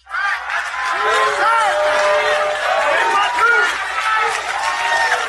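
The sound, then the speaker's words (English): A large crowd cheers and whoops loudly and steadily for several seconds in response to a Republican politician's speech, a dense wash of overlapping shouting voices with no individual words standing out. “Yet I want you to listen to the response when he starts busting bells.”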